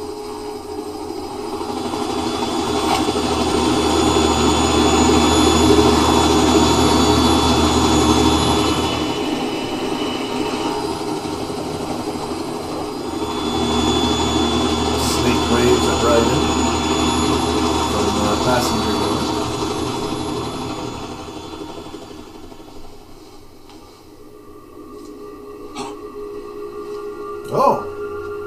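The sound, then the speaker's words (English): The engine of the Kasatka helicopter in a video game roars in a steady, broad drone that swells loudly, eases off around the middle, builds again, then thins out before a brief sharp knock at the end. “You see the Kasatka.”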